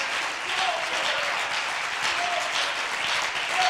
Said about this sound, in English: Come on, one more time, give him a hand clap.